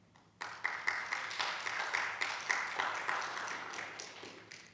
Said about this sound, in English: I just want to give a round of applause again for everybody this morning to lead us in worship.